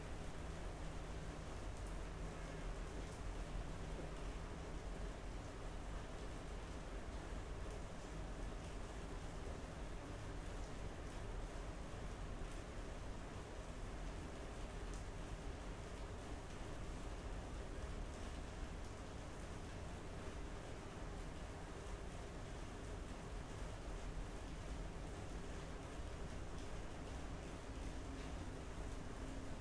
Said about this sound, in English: The sound is never the same, so pay attention to it and notice the difference of the rain changing.